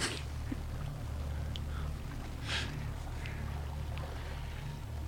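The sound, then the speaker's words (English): Water sloshes and splashes in brief bursts, with one fuller wash near the middle, over a steady low motor-like rumble, as if waves are slapping against a moving boat. “So now we got some more wavage.”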